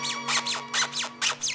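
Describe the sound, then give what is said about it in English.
Loud squeaky noises repeat in a quick, steady series, about six shrill squeaks with sliding pitch, over a faint low hum and no talking. “The gossips down the street wondering why your shades are drawn and why those loud squeaky noises seem to project more at night.”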